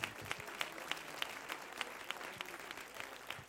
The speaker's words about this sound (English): Why don't you clap your hands unto the Lord? And let's give him praise right now.